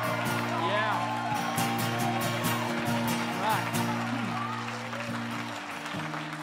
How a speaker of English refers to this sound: All right, let's clap one more time and honor them.